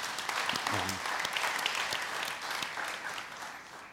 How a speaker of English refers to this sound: Yeah, you can clap for that.